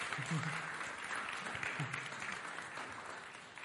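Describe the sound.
An audience claps steadily for a few seconds, a dense, even patter of many hands with a few murmuring voices mixed in, tapering slightly toward the end.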